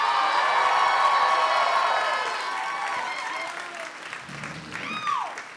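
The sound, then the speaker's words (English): A crowd applauds and cheers loudly for comedian Joe Pera, a dense steady wash of clapping with whoops on top that gradually thins and fades over several seconds, a few voices calling out near the end. “Give it up for Joe Pera!”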